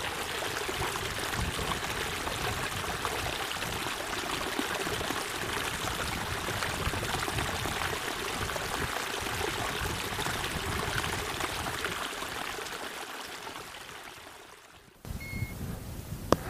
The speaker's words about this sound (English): And I'm just going to pause here and let you listen to this mountain burn making its way down the steep side of the Cairngorms.